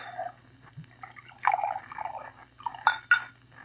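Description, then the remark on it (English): Bourbon being poured into a glass, a soft irregular gurgle that swells and fades over a few seconds, with a couple of brighter splashy bursts toward the end over a low steady hum. “Bourbon. You pour.”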